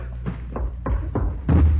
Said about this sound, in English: In here, this door. It's locked. Can you open it? No, it's a padlock. All right, stand out of the way. I'm going to try to break it down.